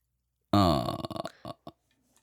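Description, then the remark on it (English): A loud, throaty glug of a drink bursts out with a deep, bubbly tone, then breaks into a quick run of gurgling pulses and two last short glugs before fading to silence. “What is the glugging?”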